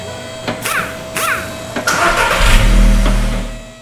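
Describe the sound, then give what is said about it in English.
The engine of an orange car cranks over in a couple of short whirring bursts, catches, and revs up into a loud, steady rumble at Superior Car Care, an auto repair shop in Athens, Georgia, with no one talking. “One of the only auto repair shops in the area that doesn't instantly turn us away when our offensively orange vehicle rolls onto their premises.”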